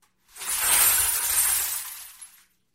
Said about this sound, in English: basically a crank instrument that looks like a bingo drum, if you can imagine that. Yeah. A hand crank that just spins this drum, and the outside is covered in mesh wire, and the inside is just filled with glass. I'll show you what that sounds like.